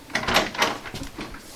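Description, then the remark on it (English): A pantry door of a house whose original section was built in 1713 swings open and shut as people step outside, a quick cluster of scraping, knocking bursts over about a second and a half, moderately loud with no voices. “We climbed back up the steep stairs and stepped outside and out the pantry door.”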